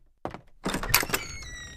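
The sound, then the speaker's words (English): A door opens as someone enters without knocking: a short thunk of the latch, then a louder rush of movement with a thin, ringing creak trailing off as it swings. No one speaks. “Excuse me, who are you to enter without knocking?”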